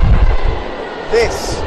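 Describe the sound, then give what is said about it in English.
Ambience on an underground platform at Pimlico Station around lunchtime: a steady low rumble and hiss of rail noise, with a brief metallic squeal near the end and faint background voices. “Okay, so already we're at Pimlico Station.”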